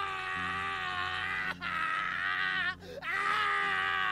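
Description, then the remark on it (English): A man screams in agony, a loud, drawn-out, strained cry that breaks briefly twice for breath before surging again, with a low droning tone underneath. “It was the scream of a man in terrible, terrible pain.”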